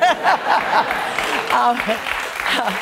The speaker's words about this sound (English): I heard the crowd.